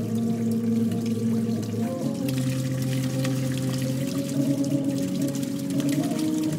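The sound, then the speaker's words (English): Steady, reedy organ-like tones from a water-jet instrument, a tube with many holes laid out like piano keys, played by blocking the water jets with a finger, drone over a constant wash of flowing, gurgling water, with the pitch shifting to a new note partway through. No one speaks. “Each hole is emitting a jet of water. You take your finger and you place it on one of the water jets, and you block that water jet.”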